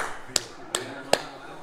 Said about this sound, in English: I'll clap it up for him, dude. Respect.